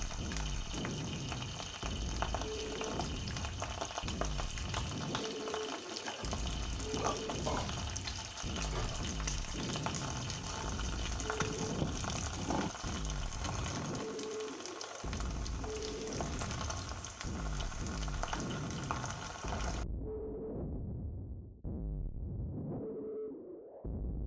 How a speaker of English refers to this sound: The hot plate is already on maximum and we can enjoy the sound of the frying egg in the morning is the best.